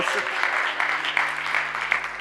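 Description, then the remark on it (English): A church crowd claps after a worship song in a steady, dense, continuous patter of applause that holds at an even, fairly loud level for a couple of seconds, with a low hum running underneath. “Come on now, give them a round of”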